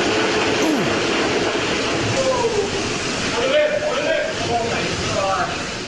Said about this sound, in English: He seems to, I don't know, twist something on this one tank of beer and then it just blasts out with fire hose like pressure out of the tank.